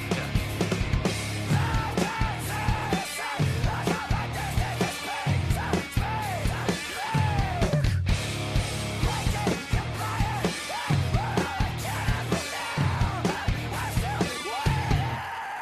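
A singer screams and yells unintelligibly over a loud, dense rock band on a song demo, the raw vocal wavering up and down throughout the steady, driving music.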